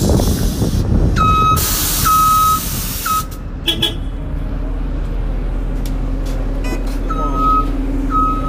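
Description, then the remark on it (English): A large Metro bus rumbles as it turns the corner and pulls up, its engine droning low while a series of loud, steady electronic beeps repeats in long pulses, pausing, then starting again. “And with that, here it comes, turning the corner right now.”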